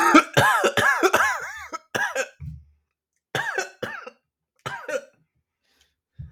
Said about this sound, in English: Are you coughing on a furball?